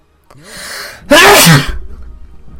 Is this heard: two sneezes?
yes